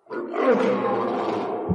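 A single loud lion roar, deep and rough, sustained for nearly two seconds with a gravelly, rumbling texture before trailing off abruptly.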